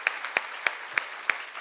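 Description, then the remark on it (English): Applause for a group of storytellers. A few sharp, evenly spaced claps stand out in a steady rhythm, about three per second, over a faint wash of softer clapping. No one speaks. “It takes a lot of bravery and vulnerability, and let's give them all a huge round of applause because they were all awesome.”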